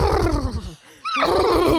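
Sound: horse neighing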